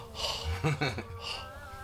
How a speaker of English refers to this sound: You're all right over there? Yes, sir. Breathing a little heavy.